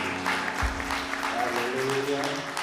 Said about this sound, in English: So shall we give a clap offering to our Lord God?